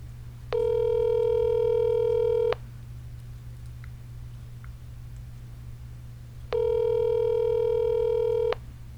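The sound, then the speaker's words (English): Two steady electronic ringback tones, each lasting about two seconds with a long pause between, over a low constant hum, like an outgoing call to a friend ringing on the line with no answer yet. “Nigga ain't gonna answer the phone.”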